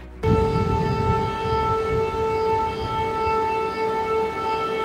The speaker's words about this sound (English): Tonight, the city of Odesa is staring down another attack. Just moments ago, air raid sirens were blaring as the Ukrainian city on the Black Sea is bracing for more.